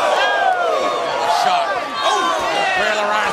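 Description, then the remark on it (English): A loud, steady roar from a wrestling arena crowd strongly behind Ric Flair during his match against The Rock, many voices cheering and shouting over one another without a break, swelling slightly and dipping briefly before surging again. “A really strong partisan Flair crowd here tonight.”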